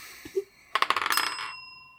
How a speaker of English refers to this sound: All right. That's a bell. Yeah, the die hit the bell.